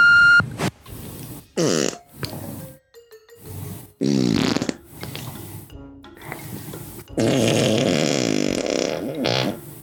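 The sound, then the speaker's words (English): A string of loud, drawn-out farts left on a voicemail message, in several bursts, some low and rumbling, others sputtering and wet, separated by short pauses, with no one talking. “If I find out who you are leaving me fat voicemails, you're going to get I'm going to knock crap out of you.”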